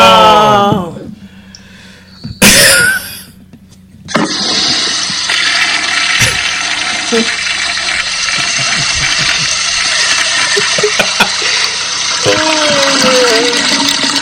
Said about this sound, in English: Just flushed the toilet. That's the crap I just took on Nia's career. By the way, people, if you do become the bottom of the barrel, your name will be announced on the show and you will get that sound effect.